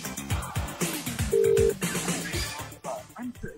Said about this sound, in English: Oh dear, I hope they answer. If you sat there looking at your phone ringing, it's withheld. Answer it.